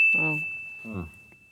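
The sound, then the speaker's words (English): A bright, high-pitched bell ding rings out and holds steadily the whole time, while two brief voiced sounds, like short vocal murmurs, pass underneath it. “And then which doubles up, but I started drinking before the bell, like I wanted.”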